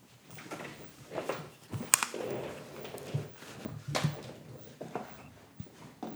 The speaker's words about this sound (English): I unplugged the thing and now I'm going to the fridge and I have to do this fast. Now I'm walking back.